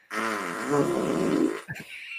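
A long, loud, buzzy fart lasting about a second and a half, its pitch wavering, then a couple of short sputtering bursts at the end. No one speaks.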